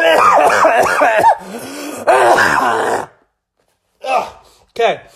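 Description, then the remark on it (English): A few seconds of strained, groaning vocal sounds, then a pause, followed by two short, sharp coughs. “Oh no, where's my mask? I'm coughing.”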